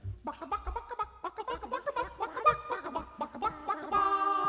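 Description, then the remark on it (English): A flurry of rapid chicken clucks and cackles fills the stretch, ending in a drawn-out, sustained rooster crow. “When the rooster starts to crowin', all the chickens jump for joy.”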